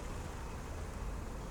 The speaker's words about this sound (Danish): Der er mange mennesker omkring dig. Der er trafik. Der er en summen. Der er bevægelse.